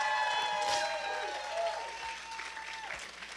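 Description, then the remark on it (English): A church audience applauds its crew leaders, dense overlapping clapping that stays loud for a few seconds before gradually thinning, with faint voices mixed in and a low hum underneath. “So give it up for all of our crew leaders.”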